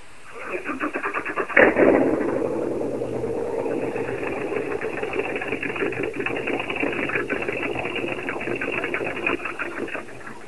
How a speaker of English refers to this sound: he's going to tempt you by starting up Breathless so you can hear the awesome power this boat has. You ready?